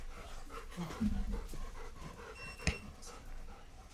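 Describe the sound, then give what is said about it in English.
A dog pants in quick, rhythmic breaths, with a brief whimpery tone and a sharp click partway through, all fairly quiet against a low room background. “I'm like, I know that breathing.”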